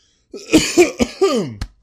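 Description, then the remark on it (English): A loud coughing fit: four or five harsh, throaty coughs in quick succession, ending with a sharp final hack, with no talking. “I got through the entire episode without having a coughing fit, and now, right at the end, it's like, my body's just like, hey, fuck you.”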